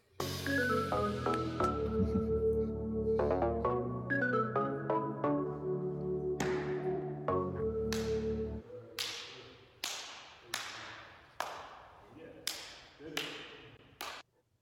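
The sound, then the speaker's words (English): A short musical passage ends, then about eight sharp, loud hand slaps ring out one after another in a quick, uneven rhythm, like a string of high fives smacking together up close. “All right, let's slap hands, baby.”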